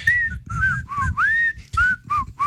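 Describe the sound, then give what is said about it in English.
A man whistles a short, breathy tune, a string of wavering melodic notes with audible puffs of breath between phrases and no talking. “He always whistles.”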